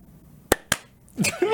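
Two sharp, crisp hand claps land a split second apart, slightly out of sync, as people with their eyes closed try to clap at the same moment without a countdown in an intuition challenge, followed by a burst of voices or laughter.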